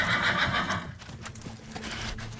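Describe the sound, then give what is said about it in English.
The racehorse Hambletonian neighs loudly while hooves clip-clop in a steady rhythm during a race, the whinny fading into continued hoofbeats with no talking. “Then finally, in the last few strides, Hambletonian inches ahead and wins by a neck.”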